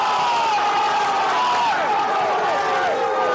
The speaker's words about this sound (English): Crowd looking for a high tackle there, but Connacht on the attack and looking good now.